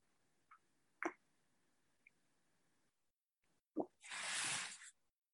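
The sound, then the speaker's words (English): Someone sips coffee: a few soft mouth clicks and a wet plop, then a loud, breathy slurp lasting about a second before it fades to quiet. No one speaks. “A coffee sip.”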